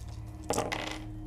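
Dice rolled for a mobility check clatter briefly across a hard surface in two quick bursts of light clicking, moderately loud over a low steady background hum, with no one speaking.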